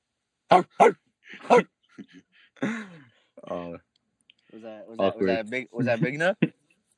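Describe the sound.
A person imitates a big dog barking, starting with a few sharp, loud woofs and then trailing into longer, growly, drawn-out barks and vocal noises.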